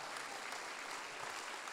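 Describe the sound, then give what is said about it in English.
The Zoe Church audience claps steadily during a sermon, a dense wash of many hands with no gaps, sustained at an even, fairly loud level for the whole moment. “Somebody clap today.”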